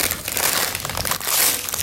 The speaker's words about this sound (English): I tear the fucking paper. And I go. He rips it up.